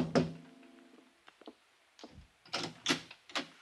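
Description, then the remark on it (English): A solid knock on an apartment door on Ursuline Street, then a few soft taps and a cluster of sharper raps that come unevenly, fairly loud, with no voices. “I was still weaving on my feet when I tapped on the door.”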